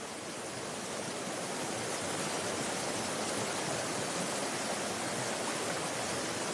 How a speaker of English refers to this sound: When you arrive at the Midmar Dam, its brown water lapping in waves seems like the ocean.